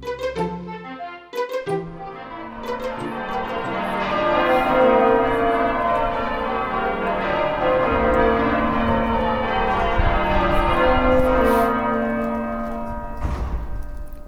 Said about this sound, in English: The bells of York Minster, one of the great cathedrals of Northern Europe.